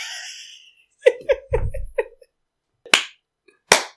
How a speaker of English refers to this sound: Thank you. Imagine like the Citizen Kane clap. Imagine that.